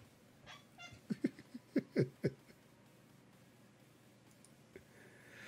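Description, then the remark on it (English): A cat, Sin's kitty, makes a quick run of short chirping meows, about half a dozen clustered together, then falls quiet against a faint background hiss. No one speaks. “The cat knows what you said, Tygo.”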